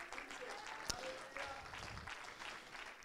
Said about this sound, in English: Can you clap your hands to the Lord?